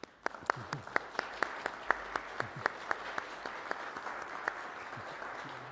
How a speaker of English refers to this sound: And let's just begin with thanking them with a round of applause.